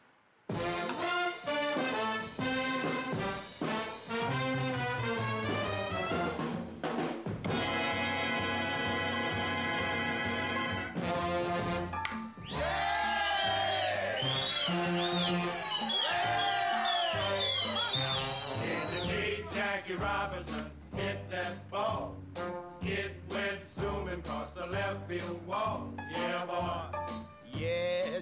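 A recorded song plays steadily at full volume, with sung vocals over a bouncy band backing and a bright, buzzy instrumental break partway through.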